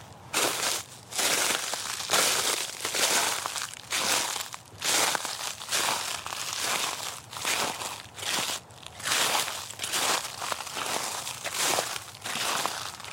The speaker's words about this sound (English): Quick wintry sound effects break. Going to give you some walking on frosted grass and leaves.